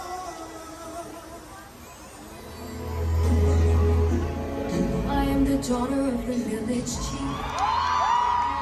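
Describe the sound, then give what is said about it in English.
A large audience at a film screening cheers and whoops loudly, swelling into a sustained roar with excited shouts and high-pitched yells rising over the din, including children's voices. “This part got a big cheer too.”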